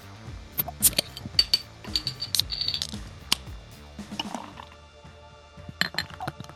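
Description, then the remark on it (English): Two Hearted Ale, an American IPA from Bell's Brewery in Comstock, Michigan, is poured into a glass, with sharp glassy clinks and taps scattered through a soft liquid gurgle and fizz, and no one talking. “you sound like you had a good pour on over there.”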